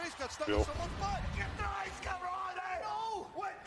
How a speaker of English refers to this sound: Are you screaming?